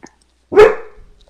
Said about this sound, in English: Bark, bark. Hey, shh. It's okay, Arnold. And that's Arnold. Maybe. When did you guys get a dog? Oh, we did. We're dog sitting. Say hi, Arnold. Oh, this is Arnold.